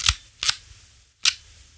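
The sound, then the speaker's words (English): Crisp mechanical clicks of a film camera being wound on and its shutter firing at a fast shutter speed while aimed at a bright computer screen: two sharp snaps in quick succession, a short pause, then one more, with no one speaking. “I'll do that again, I'll wind it on and do it one more time for you.”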